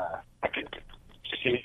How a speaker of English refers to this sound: I hear you. I can't hear you, though. You're cutting out.